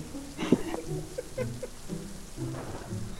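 Steady rain pours down in a continuous hiss, with low rumbling tones and brief muffled sounds rising and falling underneath throughout.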